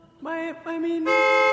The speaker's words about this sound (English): You just sit in your car and honk your horn?